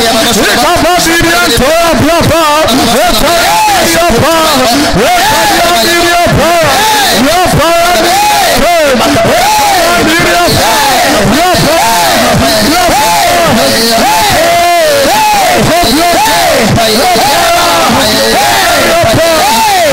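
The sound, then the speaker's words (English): A large audience prays aloud all at once, many voices overlapping in a loud, fervent, continuous babble with rising and falling cries for the whole stretch. “In the name of Jesus, clap your hands, pray.”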